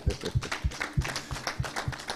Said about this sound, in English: If I wrote the Bible, then I'll be saying, yeah, clap. But I didn't write it. We are clapping. Let's clap for Jesus.